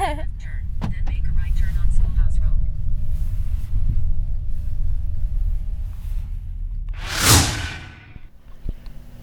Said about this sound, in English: We can go. We are taking off. Just joking, okay? It's not a plane, it's a car.